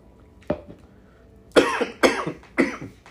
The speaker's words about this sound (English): will you cough?